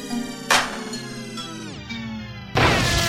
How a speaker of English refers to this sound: Severe thunder sound warning.